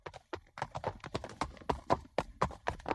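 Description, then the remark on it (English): Horse hooves clip-clop steadily on a hard country road toward Route 96 in Ovid, an area with many Amish, a quick, even rhythm of sharp knocks as a horse-drawn buggy passes in the roadway, with no voices. “The first thing I see right ahead is a horse-drawn buggy in the roadway.”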